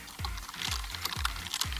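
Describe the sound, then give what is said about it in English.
Typing on a computer keyboard: a steady run of deep, thocky keystrokes, roughly four heavy presses with lighter clicks scattered between, no one speaking. “This is the keyboard. This is me typing.”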